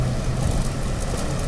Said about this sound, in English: Yes! They're sending a rescue boat. Help us!